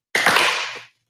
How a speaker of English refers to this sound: Oh, but first let's see what's in the secret compartment today. Oh, more champagne poppers.